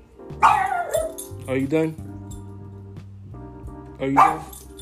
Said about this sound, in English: My dog is about to bark, everyone. Gumball, get your little butt over here. Can't you? Oh, my goodness. Get over here. I'm going to film this one day so you guys can see Gumball run to the door and bark uncontrollably.